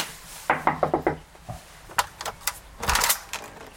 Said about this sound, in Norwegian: Og jeg tenker at når folk har en sånn inngangsdør, da jeg veldig spent på fortsettelsen. Hva som skjuler seg bak. Hva skjuler seg bak. La oss titte inn. Ja, vi banker på.